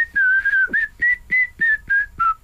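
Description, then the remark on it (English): A person whistles a short song melody, a sustained opening note followed by a series of evenly spaced, clear whistled notes in a steady rhythm, with no other sounds. “Whistling on the radio, always popular with the listeners.”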